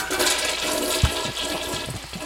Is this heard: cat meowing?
no